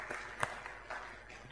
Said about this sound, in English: Yeah, you can clap. That's okay. That was beautiful.